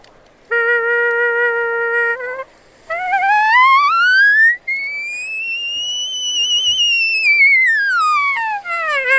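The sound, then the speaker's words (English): An elk call blown to mimic a European ambulance siren: a steady, buzzy low note, a short break, then a loud whistling tone that climbs, holds high in a long arch and slides back down. “So that's the old European ambulance, and that's what, once you start getting that change, I just tell people, before you start trying to sound like an elk, you're going to sound like that European ambulance.”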